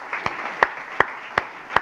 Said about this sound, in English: Yeah, let's clap for my kids, man. I love that.